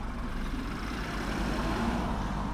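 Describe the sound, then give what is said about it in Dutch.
A car rumbles along a city street in Utrecht-West on a sunny day, a steady low engine drone holding fairly constant over a few seconds with a broad wash of traffic noise behind it, no voices. “Deze auto natuurlijk, maar ik hoor ook wat getimmer.”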